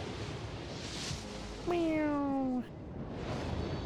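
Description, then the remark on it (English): A single drawn-out meow, about a second long and slightly falling in pitch, stands out clearly over a quiet background hiss. It may be a person imitating a cat. “Meow.”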